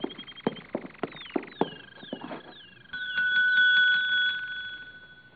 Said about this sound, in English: There's a bell over in the desk. It might be a help.